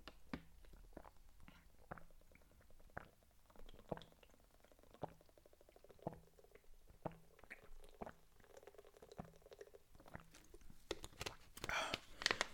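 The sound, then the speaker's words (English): Someone drinks water during a water break in steady gulps: soft swallowing sounds repeat about once a second for several seconds, quiet and wet, with a faint rustle near the end. “All right, let me drink some water. This is called a water break.”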